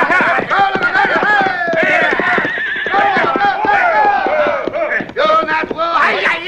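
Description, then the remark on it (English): Several horses whinny loudly while hooves pound in a fast gallop as riders ride out on command in a Cisco Kid western, a busy rush of neighs and clattering hoofbeats with shouting voices mixed in throughout. “When I give the word, ride out.”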